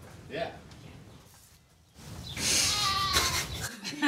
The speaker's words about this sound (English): Goat. Testify. Goat interlude. Goat interlude.